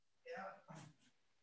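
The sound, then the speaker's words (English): A puppy that has just woken up makes two quick, high-pitched whiny yelps, the second a bit shorter, followed by a faint trailing whimper. “That's your puppy dog.”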